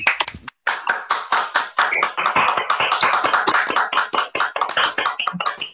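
Several people applaud over their microphones, a dense, uneven patter of sharp hand claps that stays steady and fairly loud for several seconds with no one talking.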